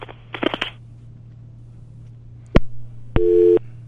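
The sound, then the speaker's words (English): A phone line hums faintly after some rustling and a sharp click, then a single loud telephone busy tone beeps briefly near the end, with no talking, as a caller on a cell phone is lost from the call. “I think perhaps maybe he too may have been on his cell phone. So we have some cell phone difficulties today, but that's okay.”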